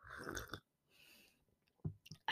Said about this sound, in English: Sorry, I just need to sip some tea because I'm like so thirsty right now.